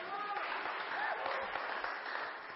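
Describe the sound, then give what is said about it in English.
An audience claps steadily, a dense crackling wash of many hands that holds at an even loudness for the whole couple of seconds, with faint voices mixed in beneath it. “And for people to recognise that that's important, actually, give them a clap.”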